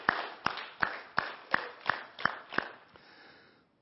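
A church audience claps together to rejoice for the Kids Life youth, in a steady, even rhythm, about eight sharp unison claps roughly a third of a second apart, before the clapping fades into a soft murmur of noise.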